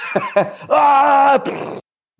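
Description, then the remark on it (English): A person vocally imitates the Wilhelm scream as a sound effect for a pilot slamming into an asteroid in space: two short grunts, then a loud, sustained, strained cry with a slightly falling pitch that breaks off into a rough, breathy tail. “We got our Wilhelm scream in, guys.”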